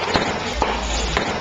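July 4th fireworks crackle outside a house, a few sharp pops scattered over a steady, muffled rumble of background noise.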